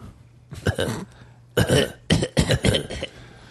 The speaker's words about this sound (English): He's only coughing. He's only coughing when we're on mic, though. As soon as the mic's off, he's fine.